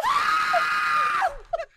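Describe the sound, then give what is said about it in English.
A man lets out a single loud, sustained high-pitched scream lasting over a second, cracking and trailing off at the end, followed by a couple of short breathy gasps. “You done took a grown ass man, got him screaming like a white girl.”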